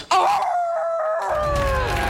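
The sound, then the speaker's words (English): Actress Frances McDormand, Nomadland's double winner for Best Actress and Best Picture, lets out a long, loud wolf-like howl, the high pitch slowly sliding downward, while a rush of crowd noise swells beneath it halfway through. “Nomadland's double winner for Best Actress and Best Picture, Frances McDormand's unexpected howl.”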